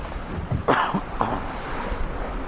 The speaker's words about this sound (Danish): Nu kommer vinden. Den kommer lige akkurat på tværs.